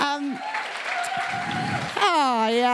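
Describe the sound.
An audience breaks into applause, a dense, steady clatter of clapping lasting about a second and a half, with a voice speaking just before it and again as it fades.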